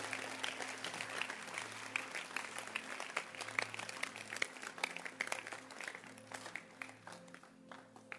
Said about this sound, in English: Clap your hands for it.